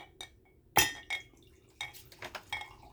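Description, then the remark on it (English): Several ice cubes clink and knock into a glass of whiskey, a quick irregular series of bright taps over about three seconds, with a louder clatter near the start and end. “And since I don't like to drink my whiskey like it's hot chocolate, I'll take some of that ice, too.”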